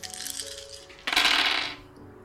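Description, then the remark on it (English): A handful of dice clatters onto a hard table in a bright, rattling burst that settles after about half a second, preceded by faint clicking and light handling noise. “Okay, I need three more dice.”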